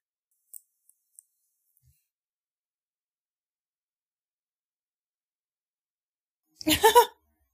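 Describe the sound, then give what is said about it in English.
Toilet paper is yanked off the roll in one quick, rustling burst near the end, after several seconds of near silence broken only by a few faint ticks. “Oh, that's a lot of toilet paper. That was a lot. Well, that was going to go in one swoop.”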